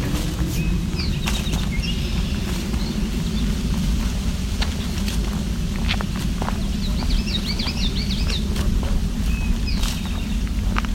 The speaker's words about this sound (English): Eastern towhee. It's also a swamp sparrow, the more ringing sound in the background. Drink tea, part of the drink your tea, right there, eastern towhee.